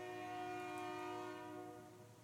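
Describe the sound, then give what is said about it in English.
A train horn blows one long, steady, chord-like blast, holding its pitch and fading slightly toward the end. No one speaks. “Somebody go knock that train off the rail.”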